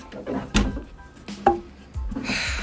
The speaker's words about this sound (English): Pull up a chair. Ugh, fine.